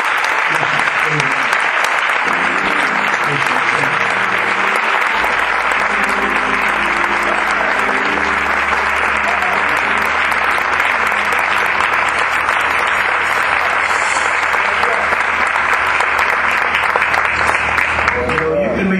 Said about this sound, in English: And I would dare go any further unless I would ask you to please give my bishop the greatest hand clap of anyone you ever given anybody.